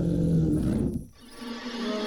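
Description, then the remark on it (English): A deep, rumbling roar from a glowing blue bear swells loudly for about a second, then fades into a lower, sustained growling tone. No one speaks. “It's turning into a glowing blue bear.”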